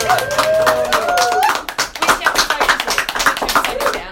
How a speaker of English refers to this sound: That's pretty that's pretty impressive. I gave you no prep as to the fact that I was going to ask you for some affirmation and applause there, and just that was enough.